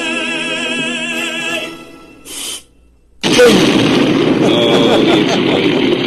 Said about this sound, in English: The explosion. Oh, that's so, what just makes it all, right?